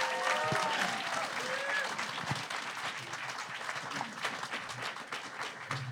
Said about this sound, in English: You've all made amazing points here today, and I think if everyone would like to give our debaters a round of applause.